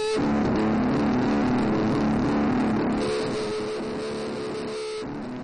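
A dense, unbroken wall of droning machine noise and humming feedback with tape echo, a steady tone running through a smeared, echo-washed texture. No voices; the loudness eases slightly toward the end.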